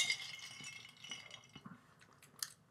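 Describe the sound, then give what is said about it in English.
Ice cubes rattle and clink against the sides of a glass holding a Black Russian cocktail as it is swirled, a run of small knocks ending in a brighter clink, with no talking. “So, probably give it a little swirl.”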